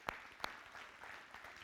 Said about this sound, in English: Absolutely, you can clap.